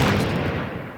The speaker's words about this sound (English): That's a lot of explosions. Explosions interrupt things.